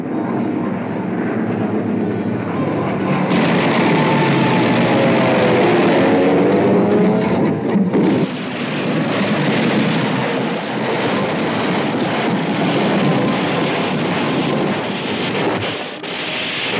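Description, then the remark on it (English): A heavy, continuous roar of aircraft engines passing overhead a small island in the South Pacific, with a droning, wavering engine tone that swells loud throughout, amid rumbling blasts and wind-like noise. “Then the planes came.”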